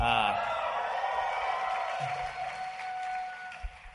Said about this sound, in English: You can cheer all you want.